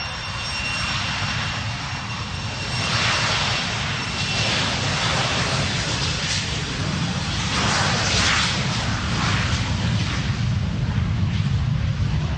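Jet engines of an airliner wind their turbines up before takeoff on a flight to New Zealand, roaring in a dense, steady rumble, a thin high whine running over the top as the noise swells slightly and holds. No one speaks.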